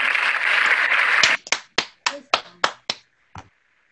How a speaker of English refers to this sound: So let's give all of us a round of applause.